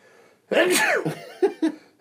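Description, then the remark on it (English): A single loud sneeze bursts out with a sharp rising intake and explosive release, followed by a couple of short breathy sounds trailing off. “It's making me sneeze. Bless was you.”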